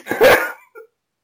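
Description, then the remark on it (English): A big dog lets out one deep, loud bark, followed by a brief, softer trailing sound, then silence. “It's the big dog.”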